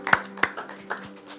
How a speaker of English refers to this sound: Now we have a big applause, mate. Everyone else.